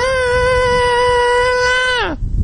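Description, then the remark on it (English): A voice belts a loud, piercing high note like a rock singer's wail, holding it steady for about two seconds before it slides downward and cuts off. “I don't know if you just hit it or you just screamed, but something happened.”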